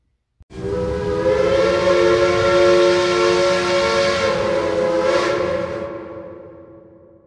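A steam train whistle blows one long, loud, steady blast of several layered tones over a rumbling engine, starting abruptly and slowly trailing off near the end.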